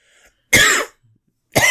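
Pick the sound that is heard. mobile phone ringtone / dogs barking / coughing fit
coughing fit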